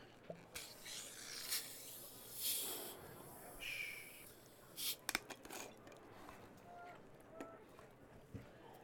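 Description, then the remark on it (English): A soft, steady fizzing hiss of a carbonated drink, with a few sharper crackles and taps breaking through midway. Faint voices murmur in the background. “I think you'll like it. It's a bit fizzy.”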